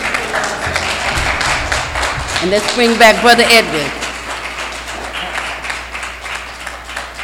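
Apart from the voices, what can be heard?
audience applause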